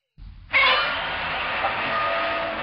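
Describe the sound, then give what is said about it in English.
A kaiju monster roar: after a short low rumble, a loud, harsh screeching bellow bursts in and holds steady with shrill, grinding overtones until the end. “Still the coolest roar out of anything.”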